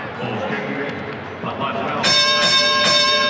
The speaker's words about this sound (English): That was your 30-point bell brought to you by Larry H. Miller, Lexus of Murray, and Lexus of Linden.